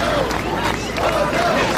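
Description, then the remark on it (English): A crowd at a meeting in Yonkers before a vote: a loud, continuous roar of many voices shouting and yelling at once, a dense crowd din with rising and falling cries and no single clear speaker. “They're afraid of the crowd screaming and all of that.”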